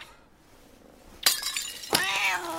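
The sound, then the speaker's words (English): After a quiet moment, a cat, Mr. Whiskers, lets out two loud, drawn-out meows, each starting with a sharp burst, as if it is upset or startled. “Where are you going? After the cat?”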